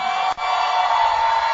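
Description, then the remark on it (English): A church audience shouts and cheers together, giving the Lord a shout, in a dense, sustained roar of many voices that fills the space, briefly dipping for an instant before surging on at full volume. “Your shouting was very low.”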